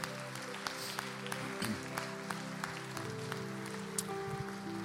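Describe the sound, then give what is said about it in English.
An audience in church claps hands in praise to Jesus, a dense, steady patter of many hands sustained throughout, with a low tonal hum and faint voices underneath. “Come on, can you give Jesus a hand clap of praise in the house today?”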